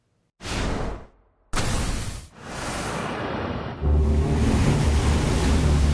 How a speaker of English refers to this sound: Rising from the turbulent sea, beneath the darkening skies of their weather-hardened home